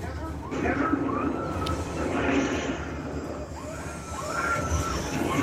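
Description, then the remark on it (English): A steady, loud airplane engine roar fills a movie stunt scene in which the plane blows up, a dense rumbling drone with rising whines, while indistinct voices murmur underneath. “And the plane blowing up behind you.”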